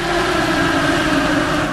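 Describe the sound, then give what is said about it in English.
Indy cars running on ethanol roar around a track, a steady, loud engine drone with a buzzing high whine layered over deep rumble, holding constant with no voices. “And no slowing down the Indy cars as they tore up the track.”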